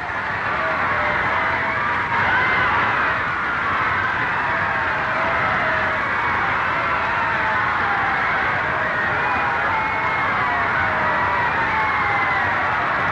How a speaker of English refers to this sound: And as they proceed with a captain's guard through throngs estimated at 2 million, the drabness of life is forgotten. Everything is rationed but cheers, and the crowd really goes wild.